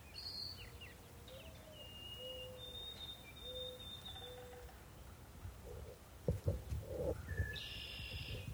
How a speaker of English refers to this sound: There's our resident red-winged blackbirds.